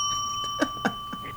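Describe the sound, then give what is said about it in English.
A bell rings with a steady, sustained high-pitched tone, broken by two brighter struck notes in quick succession, then a faint third; no one speaks. “That's a heck of a bell.”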